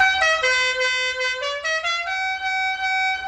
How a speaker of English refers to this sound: This car is a 1969 Dodge Charger driven by the Duke boys, Bo and Luke. It's known for its signature horn.